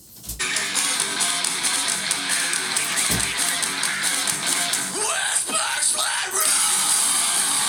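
A heavy metal song plays through a small phone speaker, a dense, harsh wall of distorted guitar and screamed vocals that stays loud and thin, lacking deep bass, from start to end.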